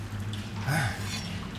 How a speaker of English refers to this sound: There's quite a bit of water seeping in now.